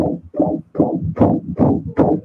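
A fetal heartbeat from an ultrasound plays on its own: a fast, steady run of muffled whooshing thumps, about six beats in two seconds, low-pitched with a swishing, crackly edge on each pulse.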